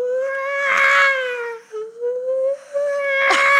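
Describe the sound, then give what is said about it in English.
A child on a spinning ride screams and wails continuously in long, high, strained cries that waver in pitch, with a brief break in the middle before the loud crying surges again. No one else speaks. “But then as we were sitting there waiting, the ride starts spinning around and the kid hasn't stopped screaming.”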